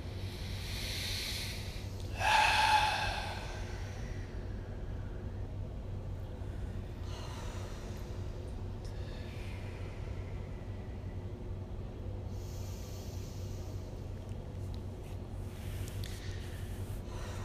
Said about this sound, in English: So we can begin by taking three deep breaths in through the nose, filling the body, expanding the body, out through the mouth, relaxing, releasing, and again.